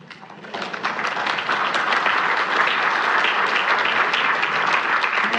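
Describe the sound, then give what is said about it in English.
A church audience breaks into sustained, loud applause that swells quickly after a quieter first half-second, then holds steady as a dense wash of many hands clapping at once. “I wasn't fishing, but that's worthy of applause for sure.”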